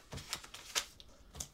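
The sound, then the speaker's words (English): Crisp rustling and crinkling of newspapers, copies of the town paper the Jackson County Star, being handled and packaged on a Wednesday for delivery around town, in a few quick bursts with short pauses between, fairly quiet and with no one speaking. “I catch him on a Wednesday, packaging up the newspapers to deliver around town.”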